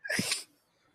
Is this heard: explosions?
no